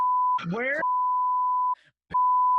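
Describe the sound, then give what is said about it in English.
A steady, high-pitched censorship bleep drones almost continuously, briefly overlapped by a snatch of a voice and cut by a short silent gap before resuming at the same loud level. “I'm gonna bleep both of them out.”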